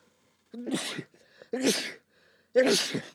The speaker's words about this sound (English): Hold on a second. I got to sneeze.